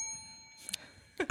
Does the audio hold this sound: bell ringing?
yes